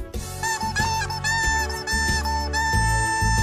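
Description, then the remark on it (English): Squeaky, honking rubber chicken squawks, made by a man squeezing rubber chickens, rise and fall in pitch to form a melody over a steady bass-heavy backing track, loud, with no talking. “It's a guy squeezing rubber chickens.”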